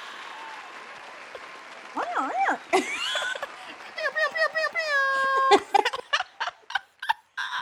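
A crowd applauds with steady clapping while high, swooping whoops and excited cheers rise and fall over it, followed by quick bursts of hollering and clapping, greeting a guest as she is introduced.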